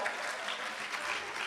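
A crowd claps steadily for a person being given a Bible, a dense wash of many hands with no pauses, at a moderate, even level throughout.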